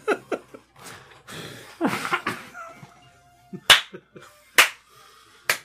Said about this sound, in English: Slow clap.